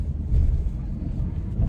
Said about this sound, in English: Whoa, he's gone over there. What's that car doing? They're not even like trying to pull in.